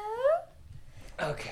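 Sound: dog whimpering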